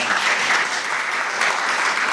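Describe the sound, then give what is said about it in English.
Steady applause from people in a US congressional hearing room, a dense crackle of many hands clapping at once, sustained and fairly loud for a couple of seconds with no break. “Not a lot of applause in that room today.”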